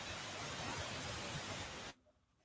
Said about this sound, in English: Yeah, that static goes away. So that's whatever device that he's using is probably has a short. Yeah, you might need a new microphone, man.